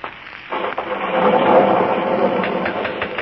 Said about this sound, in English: Listen to that thunder.